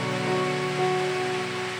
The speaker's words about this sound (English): It's raining. Yeah.